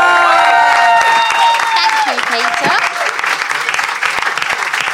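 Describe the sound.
A crowd applauds steadily with dense, loud clapping, while high whoops and cheers rise and fall over the first half and a voice briefly speaks over the noise.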